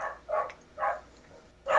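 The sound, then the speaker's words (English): A dog barks four times in short, uneven bursts, two close together at the start, then one, then a final bark after a pause, with no talking. “Even the dog fucking loves it.”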